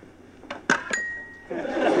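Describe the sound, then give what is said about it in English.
Three quick clinks of dishes knocking together, the last leaving a short ringing tone, then a steady hiss like water running as the dishes are cleaned. “All right, come on, everybody. Let's clean the dishes.”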